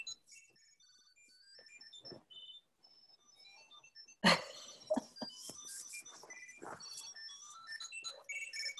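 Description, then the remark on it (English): A Bluetooth Tile tracker for a dog plays its ring song after Find is pressed in the app, a bright, high electronic melody of quick chiming notes. Midway a sharp handling knock cuts in as its button is pushed to stop it, and the tune keeps chirping faintly behind scattered clicks. “Okay, so that was to stop the tile playing the song.”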